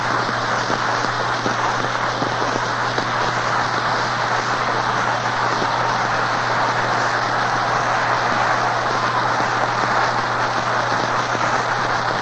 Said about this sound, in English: You know by the roar of the crowd that the Yankees have a lot of rooters. But anybody would yell over that one.